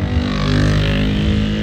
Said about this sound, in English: I'm so sorry, friend. That was just a loud motorcycle. That's ridiculous. It's too early to be making all that noise.